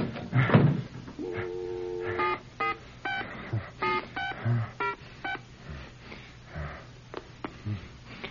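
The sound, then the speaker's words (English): A telephone keypad being dialed to make a call, with a quick sequence of distinct touch-tone beeps at an uneven rhythm, clear, mixed with small handling noises and no talking. “I'm going to call her right now and tell her that.”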